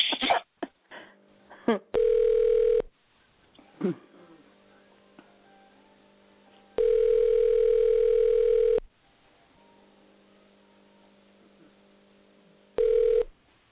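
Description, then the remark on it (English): A few sharp clicks of a phone being dialed to a number taken off a posted pamphlet, then a steady, buzzy ringing tone on the line that sounds in loud bursts of a second or two, separated by longer quiet gaps. “Perhaps the coyote was answering.”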